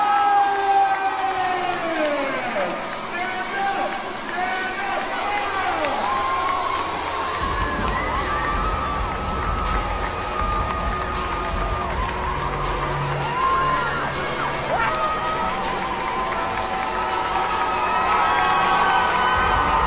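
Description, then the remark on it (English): A large crowd in a church screams, whoops and applauds nonstop as a drag queen marches down the aisle, high shrieks rising over a dense bed of clapping and cheering that stays loud for the whole stretch. “Okay, so there's the drag queen marching down the aisle of the church to the sounds of the screaming throngs applauding.”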